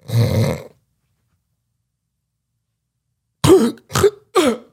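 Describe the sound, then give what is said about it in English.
A voice mimics a rough, rumbling snore, then falls silent for a few seconds before three sharp gasps for air in quick succession, imitating a person who stops breathing during sleep and then gasps for air while still asleep. “Like would stop for like 20, 30 seconds and then would just gasp, like gasp for air and then still be sleeping.”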